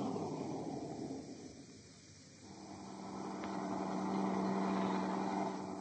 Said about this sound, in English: The rest of the line of trucks rolled past us until Cowell's truck, bringing up the rear, came into sight.